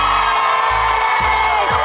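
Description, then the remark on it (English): A large crowd cheers and whoops in a loud, continuous roar at Rockefeller Plaza, with high-pitched shouts rising above the steady din for the whole couple of seconds. “We have a fired up crowd here in Rockefeller Plaza.”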